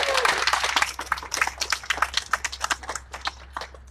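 An audience applauds a speaker after his talk, starting as a dense, loud wash of clapping that thins out into scattered, individual claps as it fades over a few seconds.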